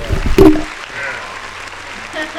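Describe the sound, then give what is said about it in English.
A round of applause from a crowd, a steady wash of clapping that holds at an even level for a couple of seconds after a brief louder burst with a voice at the start. “Round of applause.”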